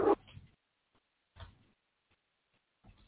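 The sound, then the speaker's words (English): A puppy makes a few short, soft whimpering yips, three brief bursts spaced about a second and a half apart, faint with quiet pauses between them. “Sorry, I have my pup out.”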